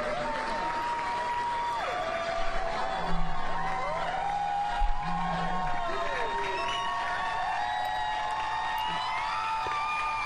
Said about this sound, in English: And Justin Jones is re-entering the chamber of the Tennessee State Legislature. Wow. To tremendous applause. His half of the room is standing and clapping, and of course he raises his one fist.